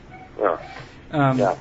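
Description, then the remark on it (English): A dog barks twice in a house: a short sharp bark, then a longer, drawn-out bark about half a second later, with no talking. “I'm dog sitting for a friend. Okay, yeah. Ooh. And there's a good one.”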